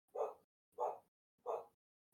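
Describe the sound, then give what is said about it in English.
A dog gives three evenly spaced, slightly drawn-out barks, each about half a second long, clear with brief silences between them and no talking. “Someone else is howling right now.”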